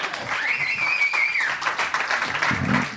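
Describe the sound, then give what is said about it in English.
A comedy show audience at The Virgil breaks into steady, dense applause that fills the whole stretch, with a high sustained whoop or whistle riding over the clapping in the first half. “Pretend you're at a comedy show and clap your goddamn hands, the Virgil.”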